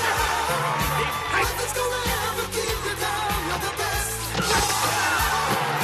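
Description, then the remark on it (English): A crowd claps and cheers steadily at a karate tournament, a dense, unbroken wash of applause layered over music with a rhythmic, stepping bass line. “The crowd is constantly clapping.”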